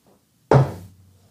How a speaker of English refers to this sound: All right, I want to knock this ash off, see what it does.